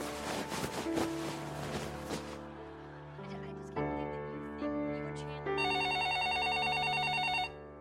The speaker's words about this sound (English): Turned on the TV to TBS and watched Friends reruns until the phone rang.